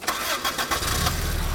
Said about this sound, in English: Okay, Amethyst, try it now. Never started a car with a key before.